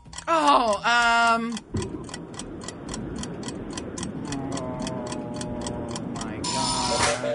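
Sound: quiz countdown timer ticking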